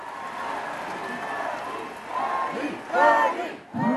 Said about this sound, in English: The crowd roared outside the Raleigh Memorial Auditorium in downtown yesterday afternoon. Thousands came out to hear Senator Bernie Sanders at a rally capping off a week of visits from other presidential candidates.